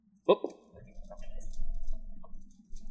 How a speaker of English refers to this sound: Now that you dropped your dice, you have disadvantage.